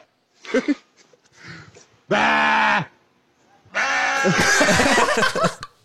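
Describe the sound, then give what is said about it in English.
A sheep lets out two loud bleats, a short one followed by a longer, wavering cry with an oddly human-sounding quality, after a few faint bleats at the start. “That sheep sounds like a person imitating a sheep.”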